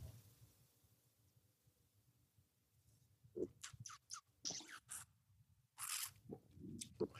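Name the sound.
sipping wine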